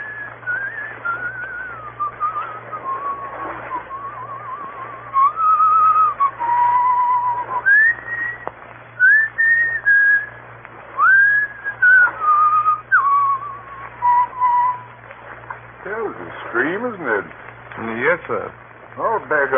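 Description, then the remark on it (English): A man whistles the slow, flowing folk tune Annie Laurie, clear, over a low steady hum, and then a voice briefly speaks near the end. “He will pass the word Blackstone and whistle Annie Laurie.”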